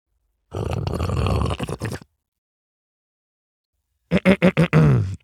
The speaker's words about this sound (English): In case you were wondering, that was me absolutely slurping some very good, what I would call craft coffee from Black and White, who is a local roaster. Out of Wake Forest.